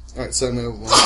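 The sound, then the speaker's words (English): A person talks steadily, then a sudden loud, breathy sneeze bursts out at the very end, sharp. “Bless you.”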